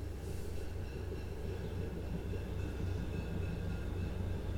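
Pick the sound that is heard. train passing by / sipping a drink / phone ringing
train passing by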